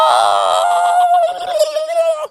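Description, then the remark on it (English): A voice imitates Froggy screaming at the top of his lungs through the house at 7 a.m.: one loud, sustained, high-pitched wail lasting about two seconds, holding a steady pitch before wavering slightly and cutting off abruptly. “He screamed at the top of his lungs.”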